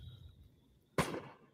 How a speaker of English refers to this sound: Ooh, there's a shot for one. Did you hear that? What's he shooting at? Right? At a knock. That's a gunshot right there. Hear that?